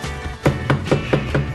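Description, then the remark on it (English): Five firm knocks on Buck's door in San Pedro in a quick, steady rhythm, fairly loud, with a low background hum and no voices. “Dude, open the door! Open up!”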